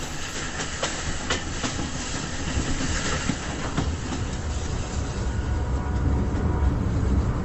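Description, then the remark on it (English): A train rolls steadily along its rails, a dense, continuous rumble with rapid clattering and faint hiss, holding a fairly even loudness throughout with no voices. “This train is the clicked passing of dreams.”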